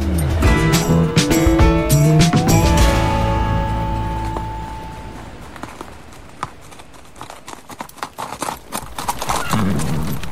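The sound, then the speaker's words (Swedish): A horse whinnies loudly, its rising neigh ringing out over the first few seconds, followed by a steady clip-clop of hooves that continues rhythmically to the end. “Hästen. Ja. Mm. Den här förindustriella hjälten som kunde göra allt möjligt.”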